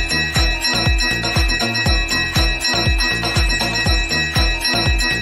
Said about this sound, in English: Nope. Hold on. Ring the bell.